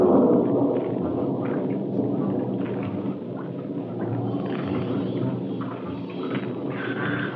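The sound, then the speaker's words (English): Rain starting to fall, steady in a dense, continuous wash of hiss with a low rumble underneath, holding at an even level throughout with no voices. “Rain's starting in.”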